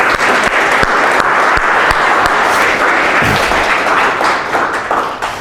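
A crowd applauds steadily with dense, continuous clapping at a loud, even level for several seconds, a few sharper individual claps standing out before it tapers slightly at the end.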